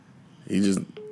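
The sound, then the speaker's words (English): A short burst of voice gives way to a steady electronic phone tone of a phone call, heard through a speakerphone. The beep holds for a fraction of a second, clear. “Unplug him and just put it on speaker.”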